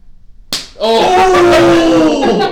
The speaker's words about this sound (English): Dude, we're going to slap. How hard am I allowed to go? Not super hard. All right. Watch the eyes.